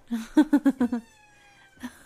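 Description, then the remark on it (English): Khaleesi the cat, upset at a closed door, meows in a rapid string of five or six short, insistent calls with a mid-pitched, strained tone, then goes quiet before one softer meow at the end. No one speaks. “And also pull at the door. Probably make noises.”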